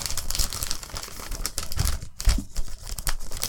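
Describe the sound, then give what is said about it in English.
Continuous crinkling and ripping of gift wrapping paper as a gift is torn open, with bursts of rustling and a brief pause midway, no voices. “I am opening the gift.”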